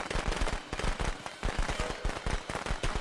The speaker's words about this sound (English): Oh, firecrackers.